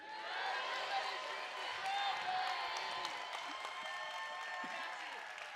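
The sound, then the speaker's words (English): A group, counted in on three, claps and cheers together, a dense, steady wash of applause with voices mixed in, holding at an even level for several seconds. “They just started clapping.”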